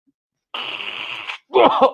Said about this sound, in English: You can't mute your mic while you blow your nose? Crazy. I'm sorry. I got allergies, bro.